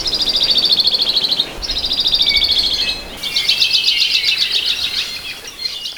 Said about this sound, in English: brings us the song of the modest alavi, or the Hawaii creeper. This little bird works with other honey creepers to protect its chicks from predators like the Hawaiian hawk.